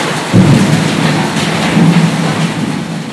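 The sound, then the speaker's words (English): Heavy tropical rain from a full-scale tropical storm pours down in a steady, dense hiss while low rolls of thunder rumble twice, loud. No voices are heard. “I very much enjoyed how you can be sitting in the roasting sun 1 minute, Then the next minute starts to rain, but not just a light shower. We're talking full-scale tropical storm.”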